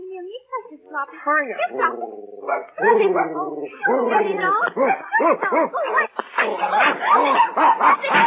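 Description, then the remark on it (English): A small dog yaps and barks in rapid, excited bursts, loud, with whiny, high-pitched yelps mixed in and almost no pause between them. “You stop that horrible dog, or I'll have you arrested.”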